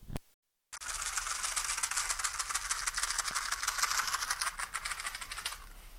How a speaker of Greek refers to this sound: Τώρα θα βάλω αυτό τον ήχο που ακούγεται ένα σπιρτόκουτο στο δεξί αυτή και ανεβαίνει πάνω κάτω, είναι πολύ ρεαλιστικό.